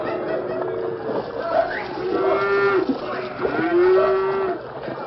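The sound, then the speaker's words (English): Several cattle low and moo in overlapping, drawn-out calls over a continuous rough, churning wash of noise as a herd plunges and splashes through a small ford on the Rio Grande. “There was an unmistakable sound, the confused plunging and splashing of cattle on the move.”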